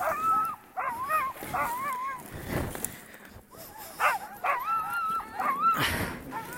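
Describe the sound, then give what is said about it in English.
Several sled dogs bark and yip excitedly, a dense overlapping chorus of high yelps and whines that pulses on and off throughout with no pause, as the dogs wait at the sled, ready to run more. “Dogs are ready for more.”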